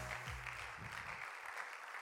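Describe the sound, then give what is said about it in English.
A crowd claps steadily together for the Lord at an evening meeting, a dense wash of many hands filling the space for a couple of seconds, with a faint low murmur underneath at the start. “Would you clap your hands to the Lord this evening?”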